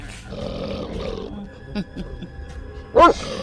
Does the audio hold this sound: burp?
no